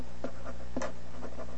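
A pencil scratches across paper in a few short, uneven strokes with brief pauses between them, fairly quiet, with no voices, as someone draws a bubble cloud and writes the word internet in the middle.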